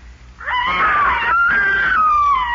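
A boy's high, sustained scream from up in a haymow rises sharply and holds for about two seconds with a slight wavering pitch, loud, with no talking over it.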